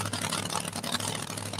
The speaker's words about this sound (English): Like I said, she's won the finals over there on Saturday night twice now in this machine. Really good running truck right here.